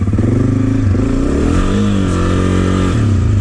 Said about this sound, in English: So you heard me rev up the engine, and I wasn't really accelerating much because the rear tire was spinning, where if I shift up to second gear, or even if I stay in first gear and I use less throttle, I was going about the same speed, but it didn't